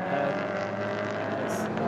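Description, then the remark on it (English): A steady, loud engine roar from race cars on a track on their 38th lap of what is probably a 41-lap race, a continuous droning whine without a clear single pass-by. “Cars come down, and cars on to their 38th lap now of what is probably going to be a 41 lap race.”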